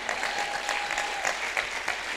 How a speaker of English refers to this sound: Clap your hands.